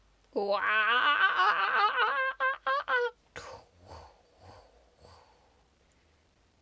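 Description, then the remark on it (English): A person's voice imitates a kookaburra call, as the sound of the Australian bush, for about three seconds: a loud warbling cackle that breaks into quick rhythmic bursts, followed by a few quieter words of speech. “That is my imitation of the sounds of the bush in Australia.”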